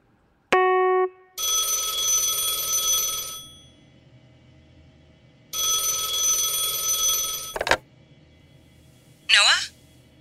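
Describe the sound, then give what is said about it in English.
A telephone rings loudly in two long, buzzing bursts separated by a short pause, after a brief beep at the start. A quick electronic chirp follows near the end. “ring! Someone's calling for Noah. Down there, on the phone.”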